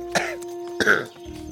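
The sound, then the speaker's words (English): Two short, harsh coughs, the second stronger and raspier, separated by a brief pause over a steady low background hum. “And I probably coughed up a bit because they're probably dry and...”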